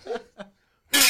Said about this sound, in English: Where's the crash sound again?